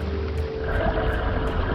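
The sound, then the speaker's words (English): A boat's engine drones steadily as the boat approaches a dock, a low rumbling motor with a faint rhythmic hiss pulsing every half second or so, with no voices. “is approaching the dock now, and as soon as he pulls in, we'll hop on board and begin our adventure.”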